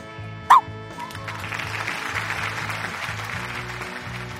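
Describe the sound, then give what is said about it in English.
Blanca, a small shaggy white therapy dog, gives one sharp, high-pitched bark, then falls quiet as steady background hiss and a soft, rhythmic low thumping continue. “And that's Blanca, a little shaggy white dog and the hero of this story.”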